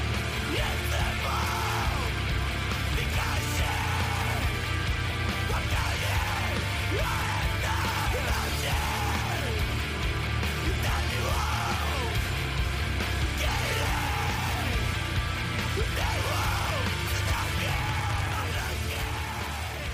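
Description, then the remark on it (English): Harsh screamed vocals in a screamo song, repeated yelled phrases every second or two, ringing out over a dense, loud wall of distorted guitars and pounding drums. “So this little section, then the drums get absolutely fucking leathered with a drum fill to bring it out of this sort of wee daydream section. Again, it's punctuated with a scream.”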